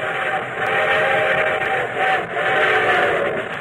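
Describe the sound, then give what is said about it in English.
A steam train's whistle sounds loud and sustained over the steady rumble and chuffing of an approaching locomotive, the show train of NBC's The Railroad Hour. The tone swells and dips slightly with no voices present. “And here comes our star-studded show train.”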